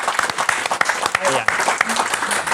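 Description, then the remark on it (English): A steady burst of audience applause, dense rapid clapping that stays loud throughout, with a brief vocal cheer or shout rising through the noise partway in. “But I want to give you another round of applause for the bravery it took to come on and really share your feelings.”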